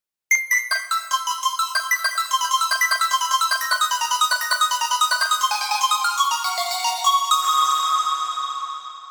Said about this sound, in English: As the dulcet tones of the harp play, we are once again enveloped in a blanket of white energy and are told to dive into the bay.